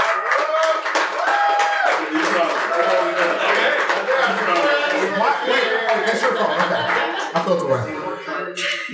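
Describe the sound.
An audience claps steadily for several seconds, mixed with crowd chatter, a few voices calling out and light laughter, the dense noise filling the room before fading slightly near the end.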